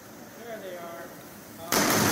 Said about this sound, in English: There they are. Double sonic booms.